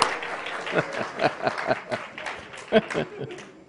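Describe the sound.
A small audience claps steadily for a few seconds, a scattered burst of hand claps with overlapping cheers and voices in the room, moderately close and lively.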